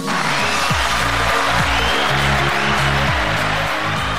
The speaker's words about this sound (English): Stephen, that is a small supply of people I keep trapped under my desk just to applaud you. That's why they're there.